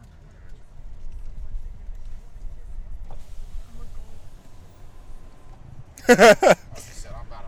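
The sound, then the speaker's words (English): Steady low rumble of a car interior with faint road noise throughout, interrupted near the end by a sudden loud, wavering high-pitched burst lasting about half a second. “We're doing the podcast right now. In the car.”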